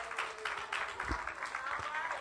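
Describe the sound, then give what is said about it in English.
An audience claps hands in praise to God, a dense, steady wash of applause at moderate loudness with no pauses. “Give God a hand clap of praise.”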